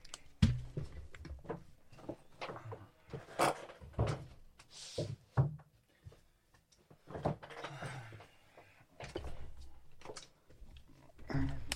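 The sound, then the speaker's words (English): A door is handled and shut properly: a series of sharp thumps, knocks and rattles spread over several seconds, with quieter shuffling between the impacts. “Let me close the door properly.”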